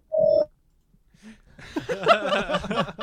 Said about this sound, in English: Alarm's going off.